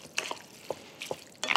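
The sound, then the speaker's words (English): About a cup of reserved broth poured into a bowl in a few short, uneven splashes and gurgles, with small bright drips between them; fairly quiet, with no one talking. “Then the broth goes in.”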